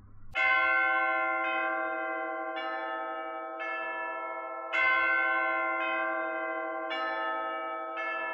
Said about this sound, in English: For many churches, the bells calling the faithful to services or weddings or funerals is just a recording.